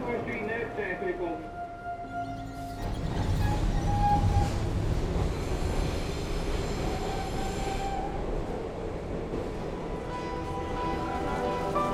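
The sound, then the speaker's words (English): A subway train rumbles loudly and steadily, with a broad low roar, metallic wheel squeals and tonal whines rising over the constant mechanical noise, on a ride headed to Chinatown. “The book, it's taken me down here, subway.”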